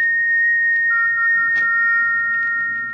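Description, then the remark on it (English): An eerie whistle, heard late at night in a bedroom as a storm is brewing, holds a steady, piercing high note, soon joined by a second, lower tone that hums alongside it for about three seconds with no voices. “It's come again. That whistle.”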